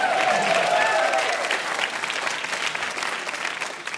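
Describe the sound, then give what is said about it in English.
A crowd breaks into sustained applause, dense steady clapping with a few cheers and whoops mixed in at the start, then holding at an even level for several seconds. “You may applaud.”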